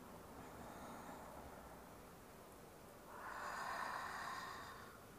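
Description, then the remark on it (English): Two slow, deep breaths, a long airy inhale followed after a short pause by a louder, fuller exhale, with no talking. “Breathing deeply.”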